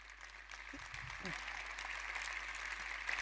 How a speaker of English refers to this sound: Let's stop clapping so I can finish this one.